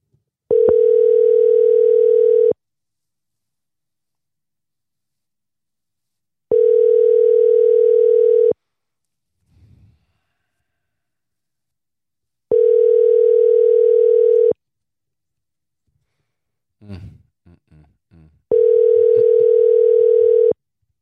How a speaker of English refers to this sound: So I'm going to call this Mike Tucker again and see if they answer the phone. Not too sure why they didn't answer the first time. Let's see.